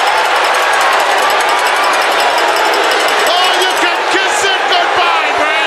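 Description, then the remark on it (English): A packed wrestling arena crowd roars loudly and continuously as a wrestler comes out, a dense wall of cheering and shouting with scattered whoops rising above it, filling the whole stretch without pause. “So Ric Flair's there and the crowd is hot about it, right?”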